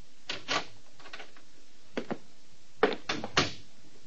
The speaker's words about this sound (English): And when he did answer, he only cracked the door an inch.